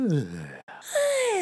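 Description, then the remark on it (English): Two genuine yawns in quick succession: a voiced, groaning yawn that slides downward, a brief silence, then a higher-pitched, drawn-out yawn that rises and holds steady, both moderately loud. “Because we're both real yawns.”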